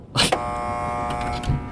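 A steady electronic buzz from an apartment door buzzer, rung to gain access, drones strongly for over a second, its tone holding evenly, with brief noisy bursts at the start and near the end.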